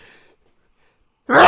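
A brief, soft breathy rustle fades into silence, then a sudden loud sneeze bursts out at the very end, sharp and forceful, set off by smelling something.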